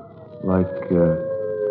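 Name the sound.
coyote howling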